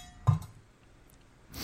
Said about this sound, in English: Wow. That works. You get a bell.